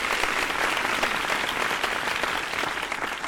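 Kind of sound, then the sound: sound effect, applause sound effect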